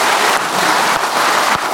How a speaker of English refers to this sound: So yeah, let's clap for that. That's really awesome.